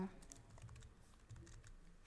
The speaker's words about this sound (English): So who's clicking away? Who's typing? Me.